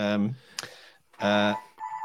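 A mobile phone rings with short bursts of bright electronic ringtone, two fuller buzzing pulses and then a thinner steady tone, with brief quiet gaps between.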